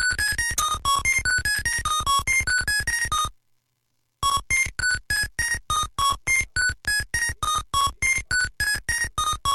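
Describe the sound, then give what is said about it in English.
Frantic electronic video game audio from a game played in a car on a road trip: a relentless stream of rapid, harsh bleeps and blips at varying pitches, loud and repetitive, cutting out for about a second before resuming just as chaotically. “And all of a sudden we're in the car and my dad just hears the sound this game has.”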